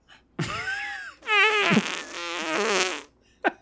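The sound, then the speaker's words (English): A loud fart sound effect from a soundboard plays: a short wavering blast followed by a longer, sputtering, pitch-bending rasp, then a brief final squeak. No one talks over it. “But now I can put fart effects anywhere in the podcast.”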